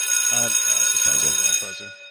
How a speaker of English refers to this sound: Oh, I think we have a doorbell.